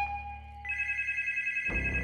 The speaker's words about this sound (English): The phone rang again.